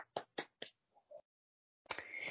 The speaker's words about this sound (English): Then we have, I was just enjoying the applause.